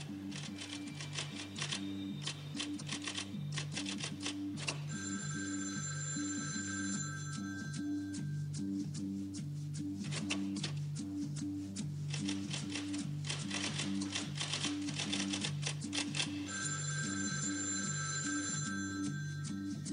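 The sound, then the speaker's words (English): A telephone rings in steady bursts after Harold dials the third phone, forcefully pushing each number key, calling Karen Eiffel; a busy background of sharp mechanical clicks and a repeating low tonal pattern. The ringing comes through clearly, and no one speaks. “Harold dialed the third phone, fervently making sure to give each number key a specific, forceful push.”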